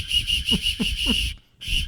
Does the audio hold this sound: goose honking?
no